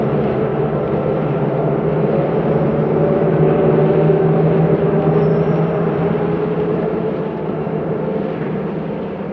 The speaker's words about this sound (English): Nobody told me this train was stopping.